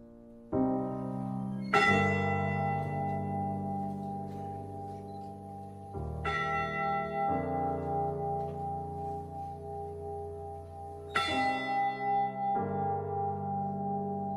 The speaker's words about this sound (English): The day after the wreck, the Mariners' Church in Detroit rang its bell 29 times for each of the crewmen lost. And this ceremony continues in Michigan today with the ship's actual bell, raised in 1995 and kept at Whitefish Point.